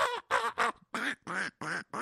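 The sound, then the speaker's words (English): A voice imitates a duck, letting out seven quick, nasal quacks in a steady, bouncy rhythm, loud, with no other talking. “Although I do refuse to do bird calls anymore on his show.”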